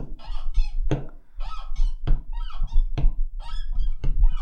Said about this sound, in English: Listen to this. Sounds like a door, isn't it? Yeah. Isn't that right?